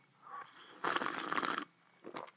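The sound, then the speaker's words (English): Someone slurps a sip of tea from a cup: one loud, airy, hissing slurp lasting under a second, followed by a brief softer slurp or breath. “First, a sip brought to you by my cup of tea.”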